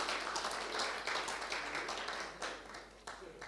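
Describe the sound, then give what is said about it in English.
A crowd applauds steadily for several seconds for a woman invited to come up and join the speaker, a dense, crackling wash of many hands clapping at once, fairly even in loudness with no voices standing out. “Let's just give her a round of applause, please.”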